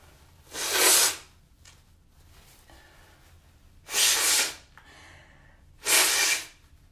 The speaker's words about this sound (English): Blow my nose.